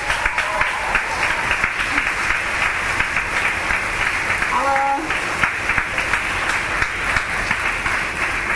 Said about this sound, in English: All right, let's big cheer.